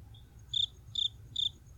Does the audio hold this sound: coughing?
no